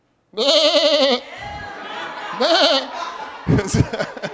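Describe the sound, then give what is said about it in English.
A person lets out a loud, wavering, bleat-like call to summon their sheep to come. A shorter second call follows, with a brief burst of laughter near the end. “This is how I call my sheep.”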